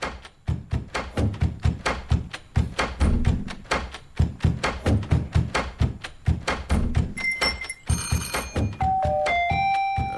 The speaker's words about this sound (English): Here I am knocking on the studio door.